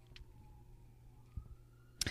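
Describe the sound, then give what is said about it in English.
A faint siren outside wails steadily in the background, its tone slowly rising in pitch, with a couple of brief sharp knocks breaking through and no one speaking. “You know, I personally bought this microphone because you have to be really close to it to pick up any sound, and y'all can still hear these freaking sirens because that's how loud these sirens are.”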